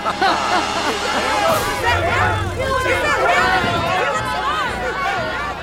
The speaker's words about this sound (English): There's some disturbance in the crowd.